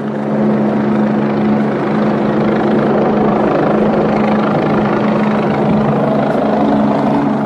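A military helicopter hovers directly overhead, its loud, steady rotor roar and engine drone filling the air continuously with no pauses and no voices.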